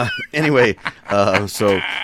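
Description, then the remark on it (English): A person's voice mimics a goat, giving three loud, quavering bleats in quick succession with short pauses between. “You're goat smelling that.”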